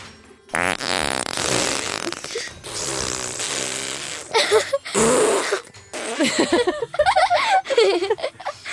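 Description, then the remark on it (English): A long, loud, drawn-out fart sound effect plays from an Alexa smart speaker after it is asked to fart, buzzing and sputtering for several seconds, followed by bursts of giggling laughter. “I've never used it to make fart noises, but I must try.”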